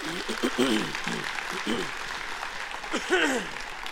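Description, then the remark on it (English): A church audience applauds steadily for a few seconds in gratitude to the church members, a dense wash of clapping with voices calling out and cheering over it. “And they were so gracious and so kind, and I felt so loved, and I felt so taken care of by everyone here that I think they deserve a round of applause, just gratitude.”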